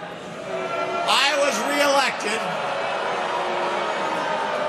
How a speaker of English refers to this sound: You know what's funny is the crowd's not booing. They're just saying, who are you? Who? Who?